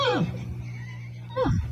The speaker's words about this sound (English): Who started it? That was the horse. Both times? Yeah. Both noises was the horse. I thought the lady made a horse. And the lady's laughing. And the horse is neighing.